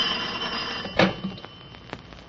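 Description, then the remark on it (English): A telephone rings in a neat, clean apartment just as the door is opened, a steady, high-pitched electronic trill that carries through the whole moment, broken by a sharp knock or clunk partway through and a few fainter clicks afterward. “Just as we opened the door, the telephone rang.”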